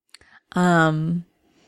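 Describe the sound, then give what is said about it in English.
A single drawn-out meow from a male cat hanging on a doorknob, loud, lasting about half a second with a steady tone that dips slightly at the end, preceded by a couple of faint clicks. “He's incredible, this cat.”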